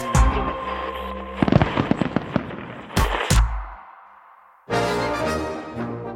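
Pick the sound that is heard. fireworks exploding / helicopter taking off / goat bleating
fireworks exploding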